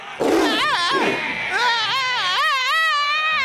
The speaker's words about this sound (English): Scream, you silly little man.